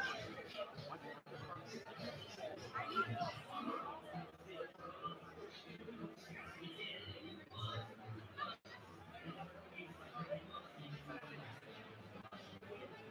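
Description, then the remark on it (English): Dense crowd chatter fills the whole stretch as someone walks through the crowd at an event, many overlapping voices blending into a steady, moderately loud hubbub with no single speaker standing out. “We're going to continue to kind of walk through the crowd.”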